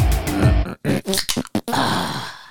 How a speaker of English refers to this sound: Oh, that sounded like a beer, bro. That sounded like a beer going down the gullet, bro.